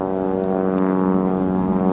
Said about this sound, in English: All right, plane, go by. Fucking Jesus. Sorry, sounds make me crazy sometimes. It's like they frustrate me. All right, plane went by, train went by.